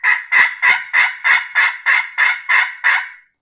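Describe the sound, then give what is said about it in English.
A series of about nine sharp, evenly spaced yelps from an aluminum turkey call, loud and raspy with a steady high pitch, played alone with no talking. “Now, if you go with an aluminum call, mm-hmm. I always recommend that aluminum call if you're going to be out there in those windy kind of days.”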